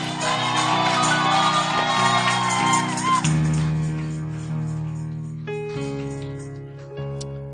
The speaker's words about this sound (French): Est-ce que tu peux faire des cris, pousser des cris de joie ce matin?